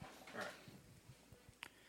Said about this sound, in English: Oh, yeah, the dog.